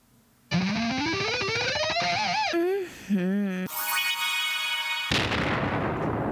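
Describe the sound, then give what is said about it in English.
A synthetic rising whine and warbling electronic tones build up, then give way to a loud, noisy explosion blast that rumbles out at the end. No one speaks. “I love that explosion at the end.”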